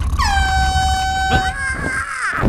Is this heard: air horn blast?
yes